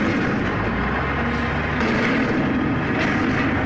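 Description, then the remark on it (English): A garbage truck rumbles outside, its heavy engine producing a loud, steady low drone layered with broad mechanical noise throughout, with no voices. “And, oh God, there's a garbage truck outside.”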